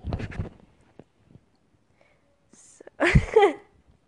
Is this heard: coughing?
yes